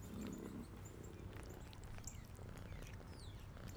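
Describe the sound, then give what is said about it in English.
A female kitten purring loudly and steadily as she grooms herself after finishing her meal, a continuous low rumbling vibration that fills the whole moment, with a few faint high chirps in the background. “The kitten finishes her meal and begins her bathing ritual, purring loudly.”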